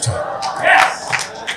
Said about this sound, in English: It's the most you shouted this whole conference.